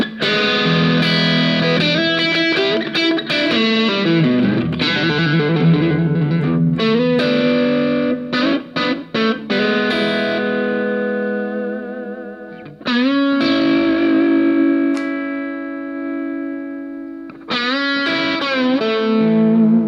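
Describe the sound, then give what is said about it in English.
Distorted Stratocaster electric guitar noodles freely, mixing fast runs and choppy bursts with long sustained, singing notes that bend and waver. Played loud, with no talking. “So I really admire guys that make a Strat sound that.”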